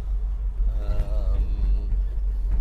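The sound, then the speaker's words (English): Steady, heavy low rumble of road noise from inside a car driving on an island road, continuous throughout, with a brief faint higher tone drifting over it near the middle. “So this is getting to the part of the island where I might actually pass a car, so I'm gonna go put my hands on the wheel.”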